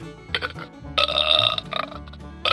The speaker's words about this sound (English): I've learned that girls burp as much as boys